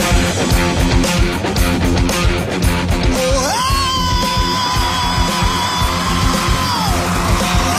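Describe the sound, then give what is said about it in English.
A hard rock singer auditioning before judges lets out a high, sustained wailing opening scream that rises sharply, then holds steady for several seconds over a loud, driving band before breaking off. “Here in the background there, all the judges turning around just off that opening scream.”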